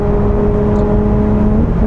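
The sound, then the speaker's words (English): A supercharged V6 engine, mounted behind the driver in a mid-engine car on an open road, hums loud with a steady, whining drone, its pitch edging slightly upward near the end as the throttle is blipped between gear changes while shifting down. No one speaks. “I just blipped the throttle for you between the gear change, just so you can hear it.”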